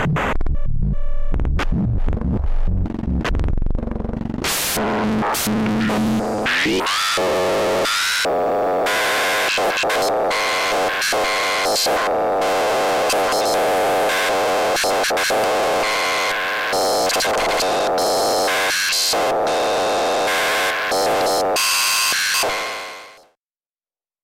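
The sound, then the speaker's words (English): A Pico VCO oscillator in a modular synth drones harshly while its pitch is modulated by an X/Y output of a Kitty Eyes module, sweeping and wobbling through buzzy, noisy tones with throbbing pulses, loud and continuous for about twenty seconds before cutting off, with no talking. “I'm also going to use one of the X and Y outputs from the Kitty Eyes to modulate the pitch of the Pico VCO.”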